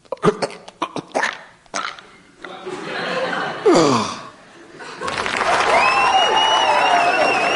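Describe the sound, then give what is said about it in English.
Scattered claps start up and swell into a loud, sustained wave of theatre audience applause, with shrill whistles and a few vocal whoops rising over the clapping toward the end. “Marcus Faversham passed away to the longest applause in recorded history.”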